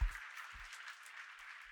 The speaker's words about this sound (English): Now put your hands together and give the Lord a hand clap of praise as you take your seat.